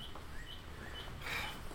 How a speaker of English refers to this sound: Well, at least the birds are singing. Anyway, they seem happy.